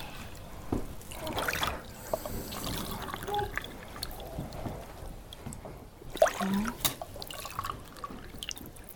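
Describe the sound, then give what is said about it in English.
Three cups of water pour and splash into a mixing bowl, a steady trickle with irregular drips and splashes over several seconds, with faint background noise and no clear talk. “3 cups of water.”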